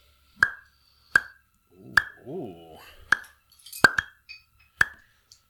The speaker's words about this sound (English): It has a different pop to it. It's like that other beer that we had, the Duval.